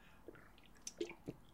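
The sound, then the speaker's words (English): Quiet crunchy chewing of a snack: four short, crisp crackles at irregular intervals, with faint moist squishing between them and no talking. “Oh my God, it's crunching like a Dorito.”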